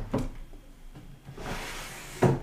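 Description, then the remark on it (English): A drawer holding a notebook of tax records opens and shuts: a sharp wooden knock, a soft sliding rush, then a second firm thud as it closes. No voices. “So that's in one drawer.”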